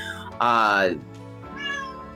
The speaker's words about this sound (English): Sorry if you're hearing my cat.